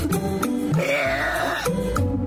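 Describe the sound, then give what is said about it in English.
A 33-year-old woman lets out one long, very loud burp, breaking the Guinness World Record for the loudest burp by a woman at 107.3, a deep, rasping, throaty belch that holds steady for over two seconds, with no talking. “breaking the Guinness World Record for the loudest burp for a woman.”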